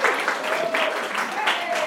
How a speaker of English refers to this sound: Okay, come on up. Give her a clap. She's great.